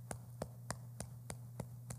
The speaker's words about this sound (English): And so Mama just claps like this, still on today. She'd be clapping right down there in her recliner at my sister's right now, watching church somewhere, clapping just like this and saying, Jesus, Jesus, Jesus. Now, just listen to this sound.